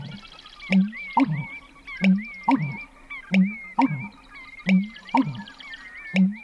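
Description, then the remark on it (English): A marsh bird's deep, hollow pumping call in a marsh as it starts getting light at dawn, repeating in a steady rhythm of low gulping notes, roughly one or two per second, while other birds chirp and trill faintly at a higher pitch. “And when it started getting light, he really started pumping, and I got this fabulous recording.”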